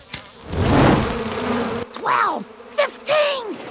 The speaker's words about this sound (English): Bees are defending themselves somehow.